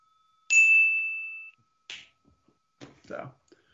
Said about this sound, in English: Ring a bell. Double bell. Go ahead. Bring the bell.